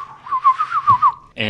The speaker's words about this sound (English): So, whistle.